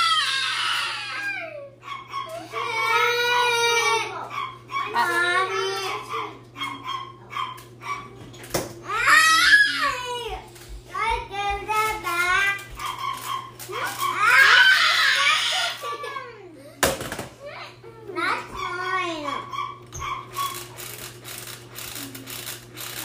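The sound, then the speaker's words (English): A young child cries and screams in repeated wavering wails during prayer time, with a few sharper shrieks rising above the rest, while voices talk and small clattering noises come and go. “You could be sharing too, and you don't have to scream like that.”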